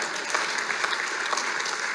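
A church crowd claps steadily for those who have been in the church over 50 years, a dense, even wash of many hands with no individual claps standing out, holding at a constant level throughout with no voices breaking through.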